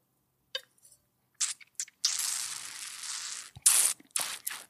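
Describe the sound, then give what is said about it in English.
A few short wet sips, then a long, airy slurp as an Argentinian wine, made from a grape found in Argentina by an Argentinian winemaker, is drawn in with air, followed by a couple more quick hissing slurps. Nobody speaks. “And let me take a little bit of a sip because it's a good wine. Let me drink some.”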